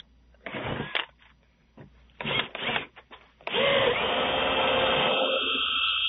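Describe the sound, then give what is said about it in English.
A locksmith's power drill, recorded by a Ring video doorbell at a woman's house door in Florida with two deputy sheriffs present, whirs in short bursts and stops, then runs steadily with a grinding, rising pitch as it bores through the metal door lock, loud and continuous for the last few seconds. “A Florida woman was shocked to receive a Ring video doorbell alert showing two deputy sheriffs and a locksmith at her door, and they were drilling through her lock. But what happens toward the end is really surprising. Listen. That's the drill.”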